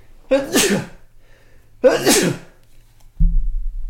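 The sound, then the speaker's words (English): Two loud sneezes about a second and a half apart, each a sharp breathy burst, followed by a low muffled rumble at the very end. “I think it might be the first sneeze we've ever had on the podcast.”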